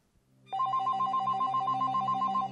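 A telephone rings loudly and continuously, a rapid trilling electronic bell that starts abruptly after a brief quiet moment and rattles on steadily with no one speaking, before an answering machine message plays.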